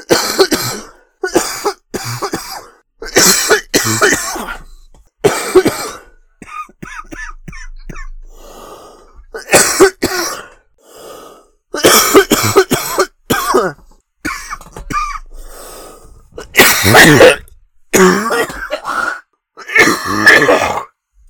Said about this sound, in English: I think it's worth pointing out that dude, you gotta supercut all my coughs together into one disgusting cough for the intro.